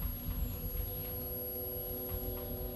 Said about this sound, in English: The only sound coming from the radio is like the buzzing of a mosquito.